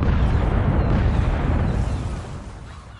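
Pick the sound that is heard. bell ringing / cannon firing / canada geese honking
cannon firing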